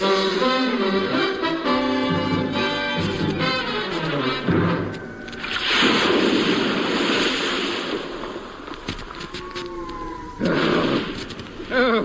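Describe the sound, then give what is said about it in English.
Howling gale-force wind of at least 40 knots over a crashing sea, loud, with heavy roaring surges of surf breaking through around the middle and again near the end. “Oh, the wind must be 40 knots at least.”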